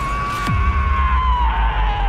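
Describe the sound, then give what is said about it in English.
Colton's high-pitched bachelor squeal: a loud, sustained squeal holds for about two seconds, its pitch sliding slowly downward, with a faint low rumble underneath and no talking. “Colton's high-pitched bachelor squeal.”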